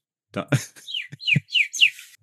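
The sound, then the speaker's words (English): A person whistles a quick string of descending, chirpy notes in imitation of a bird call, broken up by short breathy bursts, close and fairly loud, with no talking. “Oh yeah, I can do some bird calls for it.”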